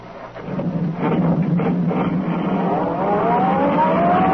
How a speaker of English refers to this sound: Turning onto the road, the tree pressed down on the accelerator. Sedan sped along the concrete after Brinkley's car.